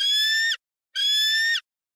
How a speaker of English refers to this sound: Baby bald eagle. There you go. It might be a baby, but it is a bald eagle.